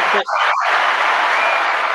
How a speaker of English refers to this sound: Proud of you. Can we get a hand clap, please? I'm so proud of you.